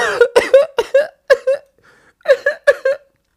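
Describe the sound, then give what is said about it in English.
A fit of sharp, rapid coughs after something went down the wrong pipe: about six in quick succession, then a short pause and a few more harsh coughs. “Something went down the wrong pipe.”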